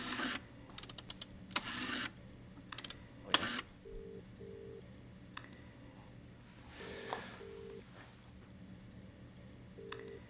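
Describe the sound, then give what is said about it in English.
A telephone being dialed: clattering clicks and handling noises at first, then quiet, steady electronic tones in short paired bursts repeating every few seconds, with no talking. “It's mighty rude of me, but, can I make a real quick phone call?”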